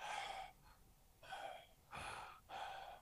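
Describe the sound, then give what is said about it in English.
A voice imitates a man's heavy, snore-like breathing: four loud, rasping breaths in a steady in-and-out rhythm, with no talking. “His breathing is like a snore.”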